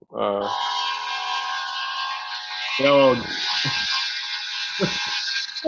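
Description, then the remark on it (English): A train rolls past with a steady, loud rushing roar that holds for several seconds, while a few brief voiced sounds break in over the top. “What was that? A train.”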